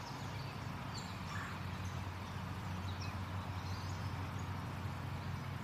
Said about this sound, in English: And then there goes the cardinals.